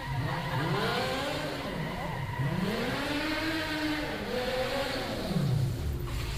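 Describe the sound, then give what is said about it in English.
A modified Opel Corsa car's engine revs up and down in repeated rising and falling surges as it drives in, loud and continuous, with a crowd murmuring faintly underneath. “Ladies and gentlemen, how would you like this guy to valet your car?”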